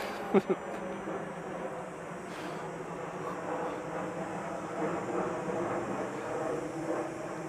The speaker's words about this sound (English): And that's an airplane.